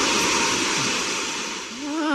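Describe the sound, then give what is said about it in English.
Loud, steady hissing of steam rushes continuously, briefly dipping before surging again, with a faint tonal whine rising near the end. “Don't let that steam get up your leg.”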